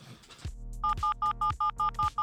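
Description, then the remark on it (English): A telephone rings on a call to someone's wife, which goes unanswered: a rapid run of about seven electronic beeps in a steady rhythm over a low thumping pulse, fairly loud, with no talking. “As you call, you ring, ring, ring. There's actually just no answer.”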